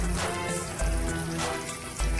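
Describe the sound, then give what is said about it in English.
Catfish is shallow-fried in a shallow pan of hot oil, sizzling steadily with a dense, continuous crackle and a low hum underneath, moderately loud, with no voices. “Now I'm shallow frying, I'm not deep frying, of course.”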